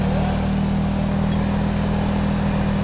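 The engine of a Taurus standard police cruiser drones loudly, a steady low-pitched hum held at a constant rev for the whole stretch, with no voices over it.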